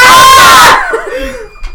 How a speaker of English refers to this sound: … just tried to get a shot of Pink Whitney, everybody, and we just screamed.